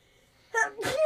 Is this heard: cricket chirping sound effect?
no